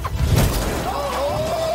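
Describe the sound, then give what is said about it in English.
A shot put ball slams into the front windshield of a bulletproof truck with one loud, crunching crack of glass, breaking through the first layer, followed by a thin, wavering tone that lingers under low rumbling noise. “That is through the first layer with just a shot put ball.”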